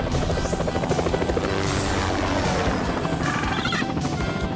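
vehicle, helicopter flying

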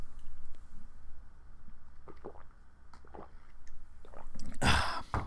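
human body sound, sipping water

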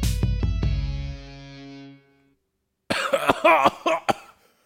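human body sound, coughing fit

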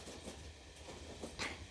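vehicle, moving train interior

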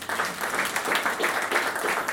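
crowd, audience applause

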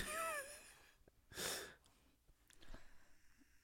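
human body sound, sniffing

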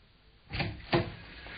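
household object, door opening and closing

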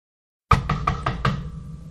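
impact, knocking on a door

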